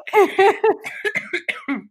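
A fairly loud fit of rapid coughing from a person trying to laugh, about eight quick bursts in under two seconds, with a voiced, laugh-like edge to several of them and no speech.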